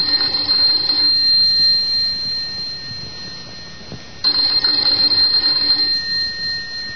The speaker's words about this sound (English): Let's begin this tale with the ringing of a doorbell.